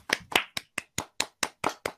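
A short burst of applause: about nine sharp, crisp hand claps in a quick, steady rhythm, evenly spaced and fairly loud, with no voices over them.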